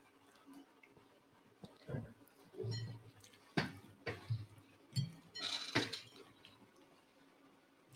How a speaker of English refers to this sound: You guys on the podcast, you hear the chewing noises, the ASMR part.